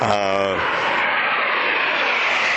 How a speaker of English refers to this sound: Four-ship Thunderbird formation just flew right over our heads here. They're just about over show center right now. They're smoking. At about 500.